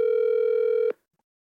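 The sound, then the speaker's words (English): A single steady electronic ringback tone on a phone line, loud and clear for almost a second before cutting off abruptly into silence. “She's probably like, why are you calling me right now?”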